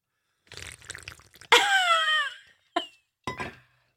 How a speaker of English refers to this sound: That sounded like an actual sound bit. It was actually me slurping on water. That was totally real.